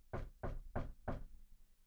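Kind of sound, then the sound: household object, knocking on a door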